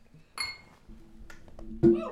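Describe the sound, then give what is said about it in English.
Glasses clink together in a toast, a bright ringing tap followed by a few lighter knocks, with faint background noise and a brief thump near the end. “Cheers, brother. Cheers.”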